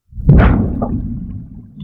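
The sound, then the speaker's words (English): A single loud, muffled underwater explosion bursts out suddenly, then settles into a deep, bubbling rumble that fades slowly. “Can you make the water explode again?”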